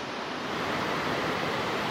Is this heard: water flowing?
yes